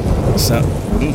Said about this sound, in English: I don't like the sound of that thunder.